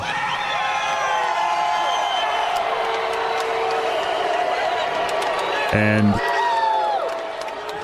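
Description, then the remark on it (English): A huge Daytona 500 race crowd boos Denny Hamlin for celebrating his win after Ryan Newman's serious crash. The booing is a loud, sustained roar of overlapping voices that holds steady for the whole stretch, with a man's voice briefly cutting through near the end. “the booing you heard, the crowd was booing Denny for celebrating after Ryan was in such a serious crash.”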